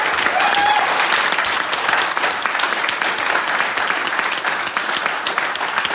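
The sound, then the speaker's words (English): A large audience at the close of a 2023 convention applauding steadily, dense clapping filling the whole stretch at a loud, even level with no talking over it. “And a big round of applause for Sean for putting all that together.”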